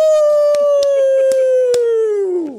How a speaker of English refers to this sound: So listen to the blue and white wolves howling at the moon in Dallas. This one's for you.